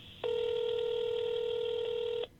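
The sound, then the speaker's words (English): A single telephone ring before a phone call, a steady electronic tone lasting about two seconds, clear, then cutting off. No voices are heard. “Before we end the show this week, I'm going to play for you a phone conversation I just had”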